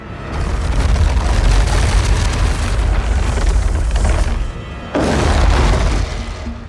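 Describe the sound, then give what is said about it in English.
The menacing rumble of the fire-breathing demon Balrog from The Lord of the Rings movies, made by sound designers dragging a cinder block across a wooden floor: a deep, grinding roar, loud and continuous with a harsh crackling texture. It drops off briefly, then surges back before fading slightly. “Sound designers created his menacing rumble by dragging a cinder block across a wooden floor.”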